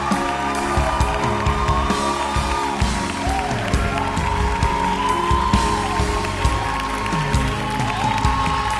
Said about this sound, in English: Worship Him, oh. Best hand clap and praise.